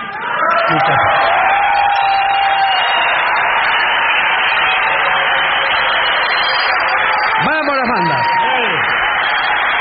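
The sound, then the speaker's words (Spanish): A loud, steady roar of a large audience cheering and applauding, with voices shouting and rising whoops swelling near the end, continuing without a break throughout. “Y entonces estoy seguro de que todos los aplausos, las muestras de cariño, son eso, son muestras de cariño.”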